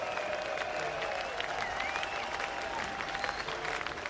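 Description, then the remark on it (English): A large band concert audience claps and cheers steadily, dense applause mixed with scattered whoops and high whistles, loud and continuous throughout with no speech. “Give yourselves a cheer.”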